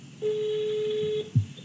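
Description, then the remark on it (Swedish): A telephone line tone sounds as one steady, clear beep lasting about a second while a call is being placed, followed by a short low thump, with no talking. “Du ska ringa upp till din fantastiska mamma och fråga lite frågor om dig.”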